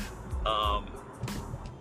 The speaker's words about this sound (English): And, sorry, my fucking car keeps talking.